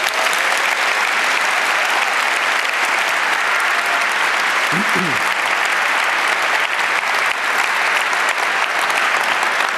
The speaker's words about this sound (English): But this guy has been paying full price, and he's still doing his shifts to make this conference work, and I want everyone to give him a warm round of applause.